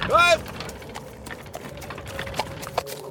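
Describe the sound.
Tired horses' hooves clip-clop in a steady, even rhythm through the woods, just after a brief, loud voiced cry at the very start.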